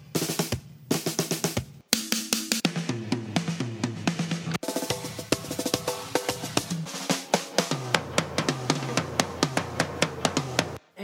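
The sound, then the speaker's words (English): A quick montage of short drum-roll intros from songs spliced back to back, each opening with a rapid drum roll of crisp hits before bright tonal chords ring out, loud, with no talking. “Let me just put together all of those little drum rolls we just heard.”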